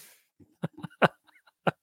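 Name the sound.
throat clearing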